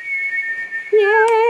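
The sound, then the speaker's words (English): A person whistles alone: a steady high note held for about a second, then a sudden drop to a lower, louder sustained tone. It's fairly loud, like a short celebratory whistle. “I feel like I should redo that whistle because it sounded very low energy.”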